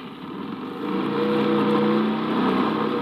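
A car engine rumbles, then swells louder and revs up as the vehicle pulls away to get back on the road, holding a steady, droning roar through the end with no talking.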